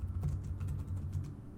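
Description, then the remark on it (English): Quick, steady keystrokes clatter on a computer keyboard as someone searches online, a run of soft taps over a low background hum with no one talking. “Here's the typing.”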